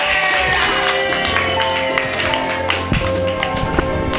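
An audience bursts into loud, sustained applause, with dense, rapid clapping and a few sharp individual claps standing out over the steady wash for several seconds.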